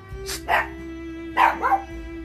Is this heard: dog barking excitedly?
yes